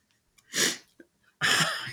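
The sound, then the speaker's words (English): A hard, forceful sniff: two loud bursts of hissing, breathy noise, a short one followed by a longer, rougher one, with no talking. “Did you just sniff? I just sniffed really hard.”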